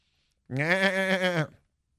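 A single loud goat bleat, a wavering, nasal cry lasting about a second, alone with no other sounds around it.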